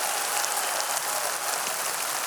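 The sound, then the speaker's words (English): Many people clapping their hands together at once, a dense, steady wash of claps with no gaps, hissy and bright like heavy rain, with no voices. “Everybody clap your hands like you know you need to wash them.”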